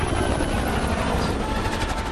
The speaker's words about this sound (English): They notch up the chase. It's like, okay, now we got a chase scene. Now we're adding a helicopter. Mm-hmm. So we got car, helicopter.